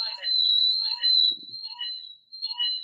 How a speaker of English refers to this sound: I got that echo going.